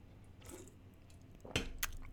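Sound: sipping a drink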